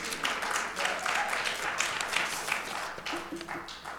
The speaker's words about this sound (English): You all can clap a little louder than that.